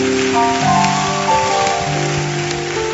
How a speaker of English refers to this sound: Clap for them as they go. Oh, your clapping can be better.